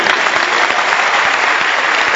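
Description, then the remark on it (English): An audience claps steadily, a dense, loud wash of many hands with no single beat standing out, filling the whole moment without any talking over it. “Can you clap for this man?”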